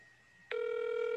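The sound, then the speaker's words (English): The ringback tone of an outgoing phone call placed on speaker starts abruptly partway through, a steady electronic buzz that holds loud and even to the end, heard as if through the call audio. “Can you hear that phone ringing?”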